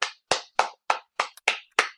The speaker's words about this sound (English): Here, I'm going to clap, but I got to put down my mic to do it.